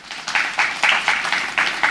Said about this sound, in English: I really wanted applause, and so that's why I did that. Kind of thank you, you know.